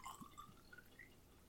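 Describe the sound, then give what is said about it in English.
A faint pour of a shot of a 13% alcohol drink into a cup, with a soft trickle and a few small drip-like splashes over about a second and a half, and no voices. “I'll pour a shot into that.”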